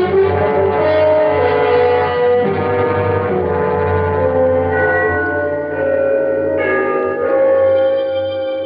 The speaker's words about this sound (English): The bells of Trinity had just run the three-quarter hour. They are at the lower extremity of the city, but I always like to listen for them. It was a quarter to midnight.